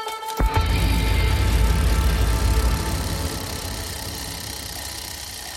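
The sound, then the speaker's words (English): A motorbike engine fires up after a brief moment of quiet, then settles into a loud, steady idle with a deep rumbling throb and a faint rattle, gradually easing slightly in volume. “So I'd like Brian Holme to take me to school on the back of a motorbike.”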